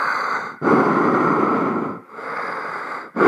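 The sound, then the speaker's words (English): A voice imitates loud, raspy breathing through a fogging mask, with three long noisy breaths, in and out, with no talking, in a slow heavy rhythm. “I had this mask on, so it's fogging up, and I'm breathing. It's like Darth Vader.”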